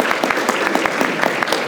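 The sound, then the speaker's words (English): A live studio audience applauds steadily during a recording, dense overlapping claps at a fairly loud, even level, with no voices standing out. “We are going to be doing a recording in front of you, the live studio audience, so please give yourself all a hand.”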